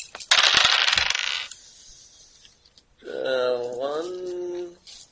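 A handful of six dice rattles and clatters across a hard surface for about a second, fairly loud, followed after a pause by a drawn-out vocal exclamation.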